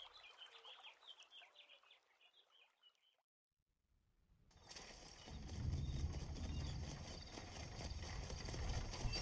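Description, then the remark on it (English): Birds chirp for a few seconds, then after a short hush a loud, steady clip-clop of horses' hooves rolls in, with a dense rumbling clatter beneath the rhythmic beats. “get the horses ready.”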